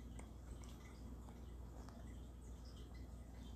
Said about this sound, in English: Do you hear the waterfall in the background? No, it's just the aquarium.